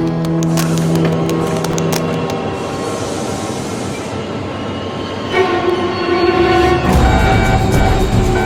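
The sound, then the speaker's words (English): A heavy cargo train from Nuremberg, Germany, carrying 40 containers of European consumer goods, arrives at a station in China. It rolls in loud, its steady rumble layered with sustained horn-like tones and shifting metallic squeals for several seconds, with no one speaking. “The cargo train carrying 40 containers filled with European consumer goods must be offloaded for customs checks.”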